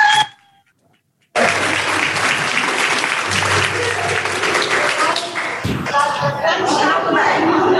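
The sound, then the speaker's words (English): A crowd at a Florida Council of the Blind gathering bursts into loud, sustained applause after a brief pause, dense clapping filling several seconds before tapering into scattered claps and murmuring voices. “I would like every person in this room and on Zoom, give it to yourself, a strong hand of applause for everybody.”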